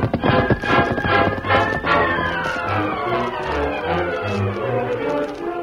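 Horses' hooves gallop in a rapid, rhythmic pounding, strongest in the first couple of seconds, while sustained, gliding tones continue underneath throughout, as Wolf and his gang ride onto the Circle Z ranch at sunrise.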